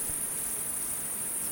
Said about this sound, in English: It just cuts to like crickets going, and then it cuts back in.